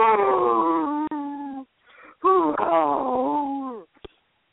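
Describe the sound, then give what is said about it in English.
A small 6.5-pound cat, being bathed, howls in two long, drawn-out wailing yowls, loud, with pitch bending up and down and a brief pause between them. “To see, like, a 6.5-pound cat howl like that.”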